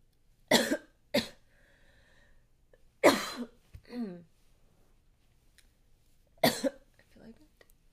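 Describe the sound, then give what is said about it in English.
Harsh, forceful coughing from a loose hair breathed into the throat: a quick pair of coughs, a pause, then a heavier cough followed by a raspy throat sound, and one last cough after a few quiet seconds. “I breathed in a loose hair that was just sitting there near my face. I breathed it in down my throat, almost swallowed it, got it out.”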